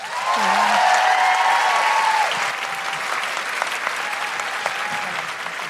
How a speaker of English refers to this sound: And a big round of applause... for Michelle Ryan.